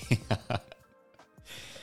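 Three quick coughs in a rapid burst, followed by a short, quieter stretch with faint breathing and shuffling.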